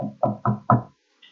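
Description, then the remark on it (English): Several firm knocks on a door in a quick, even rhythm, fairly loud with a short hollow ring after each, then quiet. “All of a sudden, a knock on the door.”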